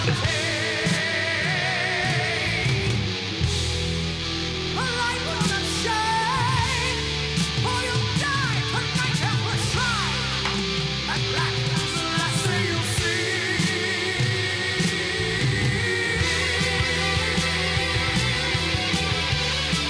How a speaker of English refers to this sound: I don't really want to skip the rest of the song. I mean, like I said, I'm on board, man.